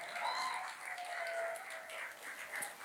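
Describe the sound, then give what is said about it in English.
A crowd at The Gate applauds the volunteers of a pancake and sausage morning steadily for a few seconds, a dense wash of clapping with faint whoops or whistles mixed in and no one speaking. “On that end, let's give a round of applause to all the volunteers who helped make this possible.”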